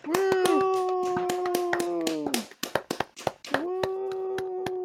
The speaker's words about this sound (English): I felt incredibly sarcastic. I was actually, I was clapping.